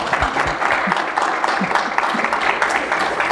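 A steady burst of audience applause, many hands clapping together in a dense, continuous patter that holds at an even, fairly loud level throughout, with no one speaking over it.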